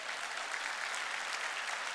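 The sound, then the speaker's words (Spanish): An audience applauding for Christ, a dense, steady wash of many hands clapping together at moderate volume, sustained throughout with no voices standing out. “Dar un aplauso a Cristo.”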